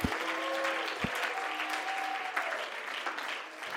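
An audience claps their hands to the Lord in a dense, steady wash of applause, with a few sharp claps standing out and faint sustained tones, likely voices or organ, underneath.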